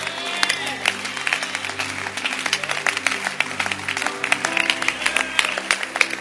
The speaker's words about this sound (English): Therefore, stand up and clap again.